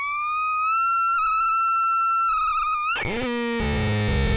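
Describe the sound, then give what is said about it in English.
An FM synthesizer, with two voices playing at once and the FM turned up to about 11 o'clock on both, holds a steady, bright whistling tone, then abruptly drops into a lower, gritty, warbling buzz with a chicken-like clucking quality. Loud throughout, no voices. “Starting getting to chicken sounds.”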